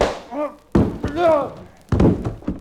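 A punch lands with a sharp thump, followed a second later by another heavy thud as a body hits the floor, loud, with strained grunts and groans between the impacts.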